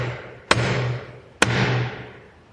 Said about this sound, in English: And sometimes we can feel it haunting our conscience. Sometimes relentlessly. Like someone refusing to stop knocking at the door.